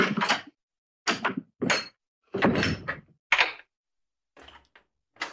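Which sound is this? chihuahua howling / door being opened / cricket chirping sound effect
door being opened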